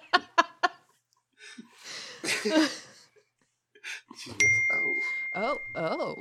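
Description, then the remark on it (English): A single bright text message notification ding on a phone chimes once and rings on steadily to the end, sounding clear, while people talk and laugh around it. “Got a text.”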